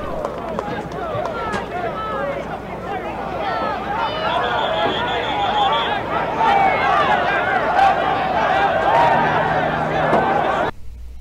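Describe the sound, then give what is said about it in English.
Referee whistles shrill over a dense roar of shouting crowd voices during a scuffle at the end of a game, with one sustained high-pitched blast in the middle of the chaotic din that cuts off abruptly at the end. “Okay, you can hear the whistles and whatnot were going on there and everything else.”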